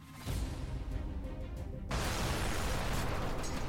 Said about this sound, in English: Engage intro voice. Cue explosions and dramatic music.